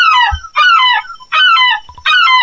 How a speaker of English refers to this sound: So one is a real seagull and one is a guy playing a seagull on a violin.